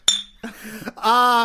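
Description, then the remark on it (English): A single bright clink of glasses in a toast rings out sharply at the start, followed by people's voices speaking. “Cheers.”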